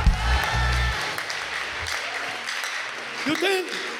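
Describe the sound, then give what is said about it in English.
An audience at a Sunday night service claps and shouts "rest" together in a dense, steady wash of applause mixed with raised voices, and a louder cry rises briefly near the end. “Clap your hands and shout, rest.”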